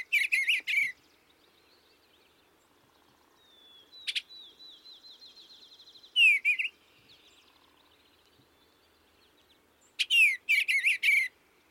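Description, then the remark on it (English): A male bluebird sings in short, bright warbling bursts separated by pauses, with a few quieter whistled notes between phrases, lifting his wings as he warbles. No voices are present. “He warbles and lifts his wings beseechingly, but shows no anger or disposition to scold and complain like most birds.”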